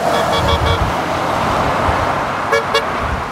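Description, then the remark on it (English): Steady road traffic rumbles throughout a protest convoy of cars adorned with Canadian flags at the border in the Okanagan, with faint car horn tones early on and then two short, loud honks in quick succession from a vehicle. No one speaks. “Horns honking and cars adorned with Canadian flags, holding signs condemning Prime Minister Justin Trudeau and signs opposing COVID restrictions and vaccine mandates.”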